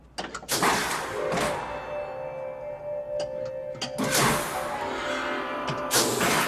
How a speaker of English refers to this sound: And again, the silence is setting it, right? Just hear footsteps.